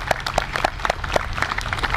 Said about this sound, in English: They came out, yes, give them a round of applause.